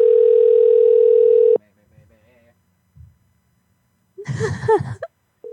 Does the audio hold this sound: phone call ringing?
yes